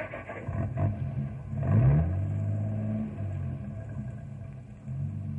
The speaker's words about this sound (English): Yeah, that's a good idea. Let's get in the truck and go.